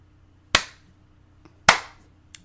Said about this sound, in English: I'm going to give you a slow clap for that one.